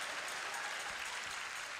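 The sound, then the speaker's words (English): An audience claps hands together during a sermon in a dense, steady burst of applause, many overlapping claps forming a continuous bright crackle that holds at an even loudness with no voices standing out. “I dare you to clap your hands like the devil between them and shout, better, better, better.”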